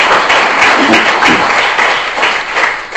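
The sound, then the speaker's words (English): An audience at a Yeshiva University Medical Ethics Society event applauds the society's organizers steadily, many hands clapping at once in a dense, loud wash of noise that holds throughout without pause, with no voices standing out. “A tremendous round of applause for all their efforts in putting this together.”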